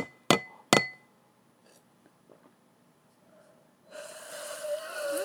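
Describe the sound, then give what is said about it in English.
Two bright, ringing clinks of glasses touching in a toast in quick succession, crisp, followed by a brief lull and then a burst of breathy, snorting noise. “I thought you had a question for me, and you're just gonna clink your glass?”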